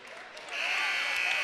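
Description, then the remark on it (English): The buzzer ending the second period of a wrestling match cuts in partway through, a loud, steady, high-pitched tone that holds to the end over a bed of crowd noise and scattered applause. “Franzi hooked up a cradle there at the buzzer, but not enough time.”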